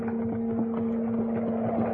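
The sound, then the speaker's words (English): A horse-drawn wagon approaches on a cleared road in bitter cold with an icy wind, rolling along with a steady low rumble and hum, and soft, regular hoof clops tap beneath it at an even walking pace. No one speaks. “I had gone only a short distance when I saw a wagon coming toward me.”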